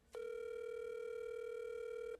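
A single steady electronic ringback tone from an outgoing phone call, sounding clearly for about two seconds before cutting off, with no one speaking.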